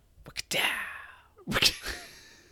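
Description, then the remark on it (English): Two people voice whip cracks one after another, each a sharp, hissy burst with a breathy trailing fade, the second landing about a second after the first. “I was actually going to ask you, can you make a whip sound?”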